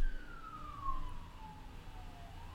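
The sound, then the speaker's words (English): An emergency siren wails past, its pitch sliding steadily downward over a low rumble of traffic, with no voices present. “We need to have a way to evolve as the sirens go by.”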